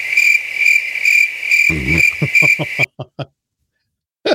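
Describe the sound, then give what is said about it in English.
A cricket-chirping sound effect played from a sound machine: steady, high-pitched chirping trills loudly for nearly three seconds, then breaks off into a few short chirps and a final brief burst after a pause. “I said I'm loading my machine up with some crickets there because”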